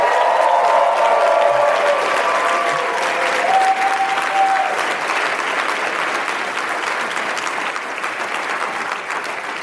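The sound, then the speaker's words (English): An audience breaks into sustained applause for the speaker's wife, who is at the back, a dense, steady patter of many hands clapping that stays loud throughout, with a few faint voices and whoops mixed in early on. “And she's in the back there if everybody wants to give her a big round of applause.”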